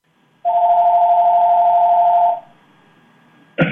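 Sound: telephone being dialed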